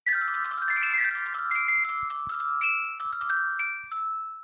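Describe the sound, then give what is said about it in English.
A small bell on a necklace jingles in a bright, continuous shimmer, with a quick run of tinkling strikes that ring on and fade slightly at the end. Fairly loud, with no voices. “that's actually the bell that rings on Jenny's little necklace”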